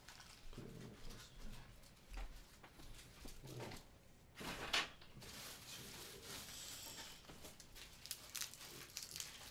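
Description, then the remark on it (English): Crinkling and rustling of wax paper being handled, in irregular bursts with a sharper crackle midway, with no talking. “Oh, wax paper.”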